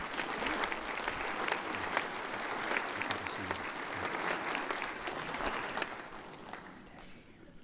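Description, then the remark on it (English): An audience breaks into a sustained round of applause, dense overlapping claps at steady loudness for several seconds before tapering off near the end. “Would you receive these people again with your round of applause?”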